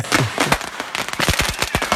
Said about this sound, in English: Okay, this sounds just like a regular fireworks display. To you listening at home, it just sounds like fireworks.